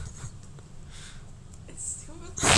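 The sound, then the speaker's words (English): Heavy breathing into a phone: a few rough, hissy breaths over a low muffled rumble, ending in one loud, harsh exhale that crackles with distortion. “Why are you breathing into the phone?”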